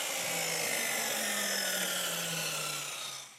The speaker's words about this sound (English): And then, though, for most of my work that I do, when I'm laying floors, it's a chop saw. Oh, yeah, chop saw. These things are great. You can, like, cut a straight line every time. And it's kind of like an engine. You can, like, rev it.